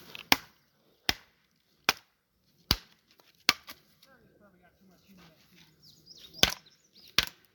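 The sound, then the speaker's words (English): A stick whacks a tree trunk about eight times as tree knocks during a Sasquatch hunt, loud, sharp wooden knocks at uneven intervals, with faint voices murmuring in the gaps between strikes. “It's hard to find a good tree knocking stick.”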